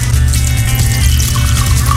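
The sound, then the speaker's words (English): Whiskey pours steadily into a glass, a continuous gurgling splash whose pitch rises slightly as the glass fills, with no talking. “So I'm going to pour myself some more whiskey.”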